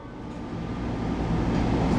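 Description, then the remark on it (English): A Gold Line metro light rail train, heard from aboard, rolls along with a steady low rumble and faint rattling that swells slightly louder over the two seconds, with no voices. “Welcome aboard the Metro Outline Bowl.”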